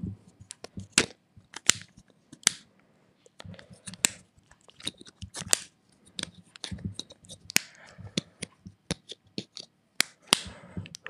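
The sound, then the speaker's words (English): A series of sharp plastic clicks and snaps, fairly quiet, with soft handling rustles between them, irregular in rhythm, as an AirPods case is opened, shut and fiddled with. “That was the AirPods.”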